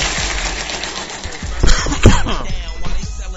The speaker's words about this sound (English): Can't stop coughing. Anyway. Remnants of bronchitis still with me 2 weeks later. Always takes me like 3 weeks to get over it. I usually get it once a year.